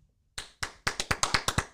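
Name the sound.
hand claps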